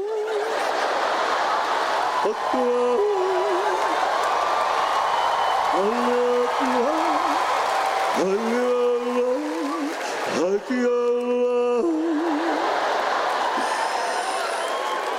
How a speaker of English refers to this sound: You're clapping. I just made that song up.